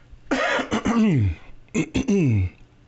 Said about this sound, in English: If I can stop coughing into the mic.